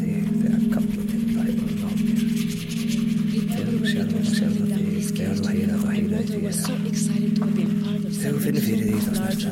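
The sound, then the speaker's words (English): Dry scratching of a pencil rubbed back and forth over carved markings, in quick repeated strokes above a steady low droning hum. “I'm going to take a pencil rubbing of some of these markings.”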